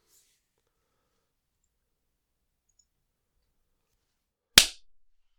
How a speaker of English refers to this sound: All right. I felt good about my clap.